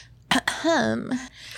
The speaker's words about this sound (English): All right, homie G's. Clear your throat.